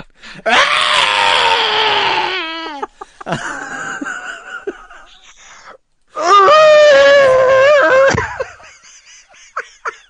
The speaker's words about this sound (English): Give us one. Give us the scream. That's where I just get lazy and insert a sound effect and you go, oh, that sounds amazing,